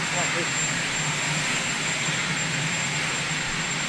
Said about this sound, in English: Is that the helicopter going off? I think so.